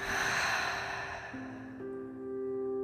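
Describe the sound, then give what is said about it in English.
A slow, deep breath, airy and sustained, filling the belly and then released as a long sighing exhale to relax the body during a guided breathing exercise, fading as soft, steady musical tones swell underneath. No one speaks. “Now, before we continue talking about weight, let's take a couple deep breaths, breathing in, filling our belly, exhaling out and allowing our body to relax.”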